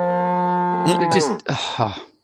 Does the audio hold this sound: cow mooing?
yes